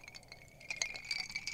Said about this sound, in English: Should we do a cheers? Yes, we should. We're drinking some red wine out of our skull mugs.